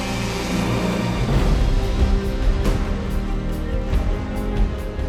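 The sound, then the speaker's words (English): Drone propellers whir loudly as they spin up, a dense, steady buzzing hum with layered tonal whine that holds for the full stretch, with no talking. “Welcome to the drone age.”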